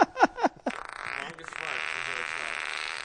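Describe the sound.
A voice imitates a small Honda D15B car engine, with a few quick sputtering revs followed by a steady, raspy buzzing drone held for a couple of seconds, fairly loud.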